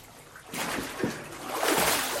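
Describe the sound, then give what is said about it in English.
Water splashes and sloshes in two loud, surging bursts as a person is immersed and lifted out again during a water baptism, with no voices. “I baptize you in the name of the Father, and the Son, and the Holy Spirit.”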